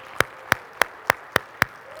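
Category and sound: crowd, audience round of applause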